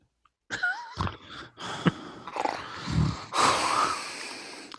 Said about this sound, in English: All we hear is your breathing. You don't hear anything? No. Just your breathing.